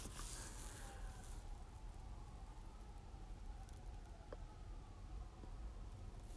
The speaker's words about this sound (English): Recording in the hood. So you're going to hear some sirens. I apologize for that, but I'm not editing it.